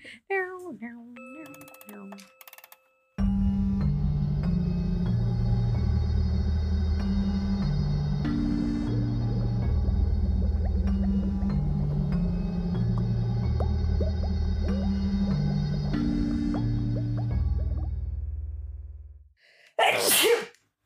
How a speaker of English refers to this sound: Theme song.